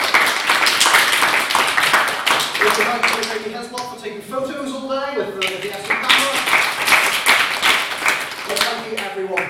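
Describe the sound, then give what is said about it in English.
A group on an outing claps to thank their hosts for getting them into a building, steadily for several seconds, a dense, loud patter of many hands, while voices chatter and call out beneath it. “so we'll do another clap.”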